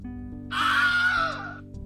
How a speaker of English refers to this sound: Matt, can you play for our listeners what the Wilhelm Scream is?